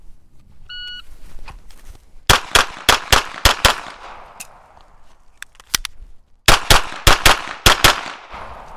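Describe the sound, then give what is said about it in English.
A shot timer's electronic beep, then a rapid string of sharp, loud handgun shots in two quick bursts of about six, separated by a short pause with a few scattered shots, during a timed shooting drill with a pocket reload from concealment, finished in 7.16. “Matt's going to show me how the drill's done if I can get his shot timer on”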